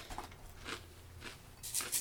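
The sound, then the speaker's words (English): Crunching of dry breakfast cereal being chewed, a few irregular crisp bites with bright crackly bursts, quiet between them and no talking. “Don't mind the silence as we chew here.”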